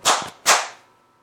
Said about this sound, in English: Clapping. And that's going to get picked up by the mic, which is awesome.